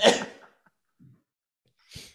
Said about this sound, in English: That's how you respond. You just cough. You just do that. Yeah. You just cough.